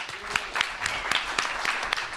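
Audience applause for a speaker being introduced: a steady wash of many hands clapping, dense and fairly loud, with sharper individual claps popping out irregularly throughout.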